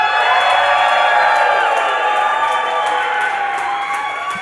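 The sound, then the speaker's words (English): A crowd cheers and applauds in a loud, steady wash of noise, with whoops and scattered claps cutting through the roar for several seconds. “I find your applause our very adequate.”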